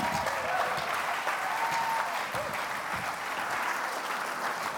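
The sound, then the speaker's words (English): An audience claps steadily after a sawing trick, a dense, sustained wash of applause at even volume from start to finish, with a faint cheer or voice surfacing briefly in the middle. “Ladies and gentlemen, great big round of applause.”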